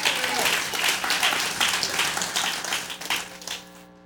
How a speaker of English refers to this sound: A little hand. Round of applause